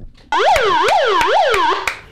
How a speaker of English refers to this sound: Unfortunately, the alarm has to go full volume. So I wonder how long before the neighbours crack it.